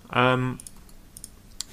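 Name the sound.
computer mouse clicking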